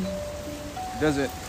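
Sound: rain falling outside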